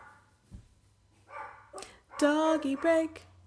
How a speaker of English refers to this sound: Doggy break, I have to sing 'cause I'm gonna be irate. Doggy break, little doggy barking intermission, ding.